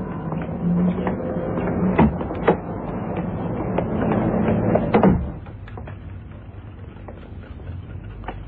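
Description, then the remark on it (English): A watchmaker's shop door is opened and then swung shut, with a few sharp clunks and rattles over a steady hum. Afterward the surroundings turn noticeably quieter. “let's go in and see if Robert's the usual sort of man. Sure, the door's this way.”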